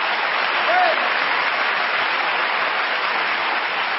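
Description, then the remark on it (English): A crowd applauds steadily, a dense, even wash of many hands clapping at once that holds at full strength for the whole stretch, with a brief faint voice rising through it early on. “Everybody in here ought to give them a hand clap.”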